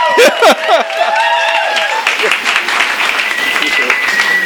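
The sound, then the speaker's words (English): An audience at an event where a novelist and TV writer is being introduced bursts into loud, sustained applause, with high whoops and cheers rising over the clapping at the start before settling into a steady roar of hands. “This is where you applaud wildly.”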